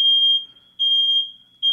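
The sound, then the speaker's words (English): Home smoke alarms blare with loud, piercing high-pitched beeps in a steady pulsing pattern, with no talking over it. “The sound of our smoke alarms going off.”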